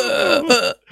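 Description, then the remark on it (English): A person vocally imitates the big cough a man let out after taking a pull on his vape: a single drawn-out, croaky, strained voiced burst, fairly loud, that cuts off abruptly into silence. “And then the camera just flicks back to him, he's there taking a puff off his vape, and he just takes a pull off it and just leaves out this big cough, we nearly choked to death.”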